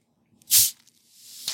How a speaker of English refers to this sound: Let's crack open the Hal's New York Black Cherry Seltzer Water.